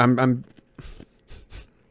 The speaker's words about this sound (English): I'm crunching on ice now because I forgot how much more sensitive this mic is.